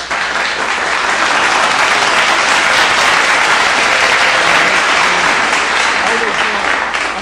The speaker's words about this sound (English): Well, but nah, I definitely thank you for coming, man. I want to clap. That's what we do after.